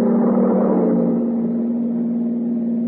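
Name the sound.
car engine revving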